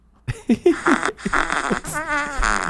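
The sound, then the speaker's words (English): A string of small, squelchy fart-like sputters comes in quick uneven bursts, ending with a brief wavering squeak. No one speaks over them. “Is that a little fart sound?”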